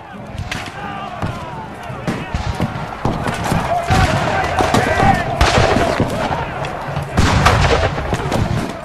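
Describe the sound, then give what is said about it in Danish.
Battle gunfire and artillery of the great battle of Tetuan in the Spanish-Moroccan War of 1860: a dense, continuous barrage of sharp cracks and heavier booms, irregular and overlapping, building louder toward the end with sudden bursts around the middle and final seconds. “Den første tur går til det store slag ved Tetuan ved den spansk-marokkanske krig i 1860.”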